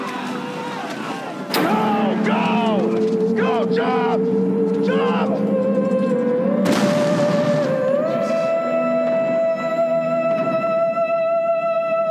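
A ship explosion in a film that blows Nick Cage into the water: two loud, broad booming blasts a few seconds apart, followed by a sustained roaring rumble with rising, groaning tones and wavering voice-like cries mixed in.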